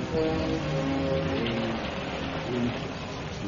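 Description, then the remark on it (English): Steady, dense hiss of rain falling outside a dispensary in a house with blown-out windows in a ruined North African town fills the whole clip at an even level, with faint low murmuring voices mixed underneath. “In a small dispensary set up in a house with windows blown out, a group of German soldiers huddle out of the rain.”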